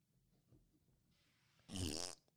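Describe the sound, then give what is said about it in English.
A loud, buzzy fart sound effect erupts for about half a second after a quiet stretch of low background noise, then cuts off abruptly. “There's that was, fart noise.”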